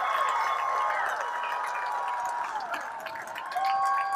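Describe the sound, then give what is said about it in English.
A large baseball crowd cheers steadily after Trey Rodriguez drills the ball to the right-field wall for a stand-up double, a dense roar with scattered shouts and whistles, holding loud for about four seconds with a brief dip before swelling again. “You can hear the crowd's response.”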